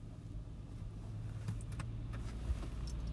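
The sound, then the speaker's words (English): The speaker's brother's car, part of a convoy of cars just arrived in Sorrento, rumbles steadily as it rolls past, a low continuous drone with a few light clicks and rattles over it, and no voices. “We've just landed in Sorrento, so we've had our cars in convoy.”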